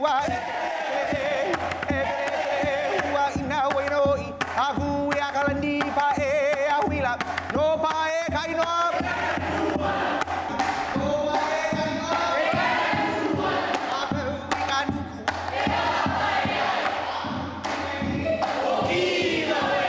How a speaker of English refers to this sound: and sometimes this dance requires that we raise our voice to the utmost point that we can raise it, and that we do maybe slap our legs as hard as we can slap it, because that stinging is part of the dance.